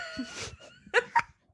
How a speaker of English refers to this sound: That sounded like a fart, but I swear that was my arm.